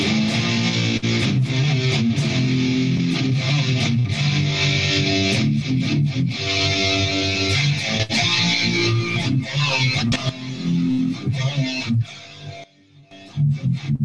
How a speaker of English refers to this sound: Like, we have two guitars live and we want them to be at equal volume, and when we play a harmony, we want you to hear a harmony. So we play this riff.